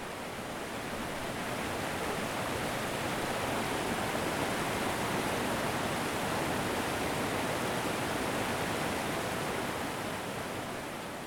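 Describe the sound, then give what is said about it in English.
Fast-moving river water rushes over large, slippery boulders at a river crossing on a hiking route, in a steady, dense roar, loud throughout, with no voices. “when I finally made it down to the river crossing, where a long line of people waited to cross along the narrow metal wire, a somewhat daunting task for some, as the water flowed fast over large and slippery boulders.”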